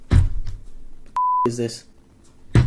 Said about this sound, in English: What is that? It's a cell phone.